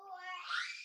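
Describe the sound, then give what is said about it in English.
A child screams once in the background, a brief shrill cry that rises in pitch into a harsh shriek, lasting under a second and sounding faint. “That was my child screaming.”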